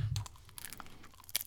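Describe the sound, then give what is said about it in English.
Someone chews a mouthful of crunchy spiced cookie, producing a run of crisp, irregular crackling bites with a low thump at the start, with no talking. “I got a mouthful of fruitcake.”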